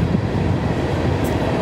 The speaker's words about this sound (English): I lost my train of thought with the train.